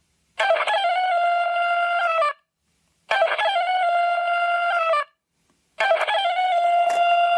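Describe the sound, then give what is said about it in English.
A talking clock's electronic rooster crow alarm sounds three times in a row, each a bright, buzzy, harmonic call about two seconds long with short silent gaps between, loud with no talking. “That's what the rooster crow sounds like.”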